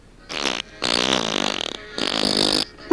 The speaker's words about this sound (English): Take that, me lad. Come get me gold now. Suck in me farts. You'll never get me gold.